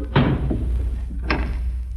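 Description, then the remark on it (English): A door shuts with a solid thud, and about a second later a second sharp clunk follows as it's locked with a key, over a low steady rumble. “Here's the key. Lock the door behind us.”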